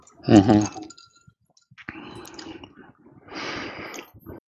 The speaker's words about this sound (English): Tinkle, tinkle, tinkle. I heard those ice cubes. Hmm. Yep. Wasn't me. It was me. It's always by the way, your DM is keeping it cool with a Rubens Pilsner.